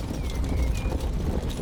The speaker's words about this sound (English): As first light breaks, there comes a rumbling of hooves from the north. A rumbling that becomes a thundering.